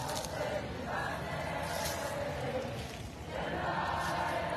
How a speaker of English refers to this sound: Here comes the next one. You're going to see them come right through the gauntlet. Listen to the crowd explode. They get all excited when they're bringing them by.